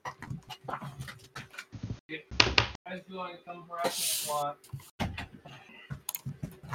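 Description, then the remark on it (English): A person shuts their door with a couple of sharp clunks and a rattle, while a person talks before and after and a dog whines. “All right, let me get my door.”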